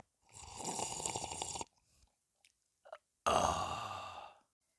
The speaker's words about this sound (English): Let's have another sip.